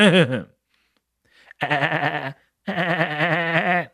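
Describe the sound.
A person imitates a cartoon character's goat- or seagull-like bleating wail as his latent power is boosted: a short burst, then two longer, loud, strained cries with a quavering, wobbling pitch, separated by brief pauses.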